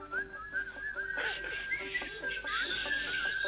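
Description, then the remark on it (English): Several people whistle a wavering tune together over quiet music, the shrill melody carrying steadily for a few seconds at moderate loudness. “Everybody whistle.”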